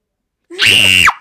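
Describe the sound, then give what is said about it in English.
A single loud, sustained high-pitched scream lasting about half a second, rising sharply at the start and cutting off abruptly, with a playful, theatrical Halloween-style quality. “That's my Halloween scream that scares you.”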